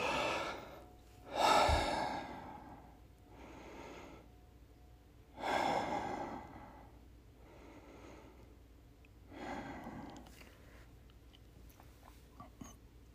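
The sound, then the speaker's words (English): Three deep, heavy breaths drawn in and released at the start of a seated meditation, spaced a few seconds apart, each an airy rush that swells and fades, with no talking. “And I want you to begin by taking three deep, heavy breaths.”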